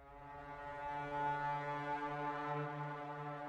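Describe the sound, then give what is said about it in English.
A war horn echoing through a valley gives a single long, deep blast that holds a steady low pitch with rich droning overtones, sounding loud and sustained for several seconds without any voices. “Head snapped up at the sound of a war horn echoing through the valley.”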